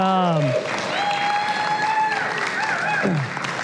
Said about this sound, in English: And I just wanted to, if we could all just take a moment and tell her thank you with a little round of applause for her.